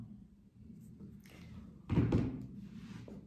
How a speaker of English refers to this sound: I banged my head. That didn't even hurt. My hair cushioned the hit.